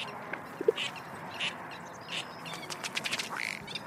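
Scattered bird calls, including duck-like quacks and short chirps, ring out over a steady hum of traffic at an overlook of the Agua Hedionda Lagoon Ecological Reserve, a saltwater lagoon in Oceanside. Some calls are sharp, others faint, and they cluster toward the end.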